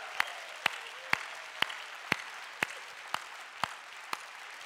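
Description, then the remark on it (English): A large audience in the auditorium of City Church applauds and cheers for first through fifth graders standing up, a dense wash of clapping punctuated by sharp, evenly spaced beats about twice a second, as though some are clapping in rhythm. No voices stand out. “I want you to stand up and let's cheer for them that they're in here with us.”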